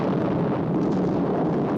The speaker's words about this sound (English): What the hell's this? Atomic explosion. I thought this was a cartoon.